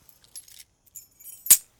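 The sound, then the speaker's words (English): Keys jangle in a few short, bright metallic bursts, ending in one louder clink as they change hands. No voices are heard. “Keys. And lower your guns.”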